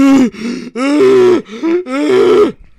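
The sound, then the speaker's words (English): A voice imitates desperate gasping for air: five loud, strained, rasping breaths in quick succession, each a harsh voiced heave, with no other speech. “I'm gasping for air. Like, I'm gasping for breath.”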